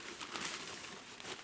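Brown paper packaging around a purchased figurine that came in a box is unwrapped, a fairly soft crinkling and rustling with irregular crackly bursts and no voices.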